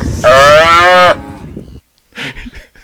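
A cow lets out one loud, drawn-out moo lasting about a second, followed by quieter rustling and a few soft background noises.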